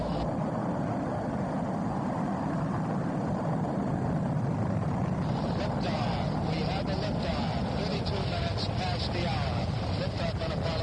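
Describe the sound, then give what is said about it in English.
A steady, thunderous roar of Saturn V rocket engines at the Apollo 11 liftoff on July 16, 1969, carrying three American astronauts, dense and rumbling with a broad crackling hiss, holding loud and unbroken throughout without fading. “On July 16th, 1969, three American astronauts lifted off in Apollo 11.”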